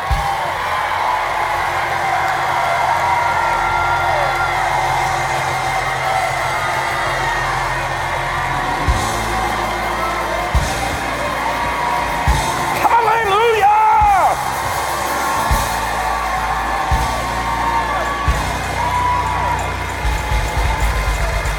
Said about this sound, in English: Doing right now as you're shouting, as you're clapping, as you're waving, as you're speaking, as you're rejoicing, you are exercising patience.